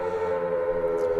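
A civil defense siren holds a loud, steady wailing tone with rich harmonics, sounding alone without any talking for just over a second.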